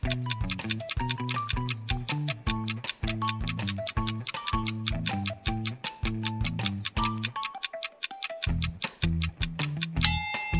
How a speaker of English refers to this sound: How did he figure it out? Time's ticking.